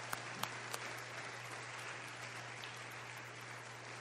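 A church audience applauds the fathers standing to be recognized, clapping steadily in a dense, continuous wash of applause, with a few sharper individual claps standing out early, over a low steady hum.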